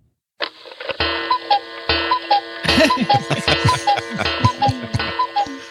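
A clock sound effect ticks at a steady, regular pace over a dense, sustained musical tone that swells partway through, loud, with no one speaking.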